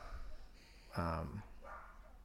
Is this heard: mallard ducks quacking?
no